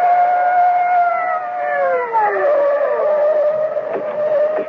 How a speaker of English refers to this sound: the blare of police sirens as two patrol cars come hurtling out of the night.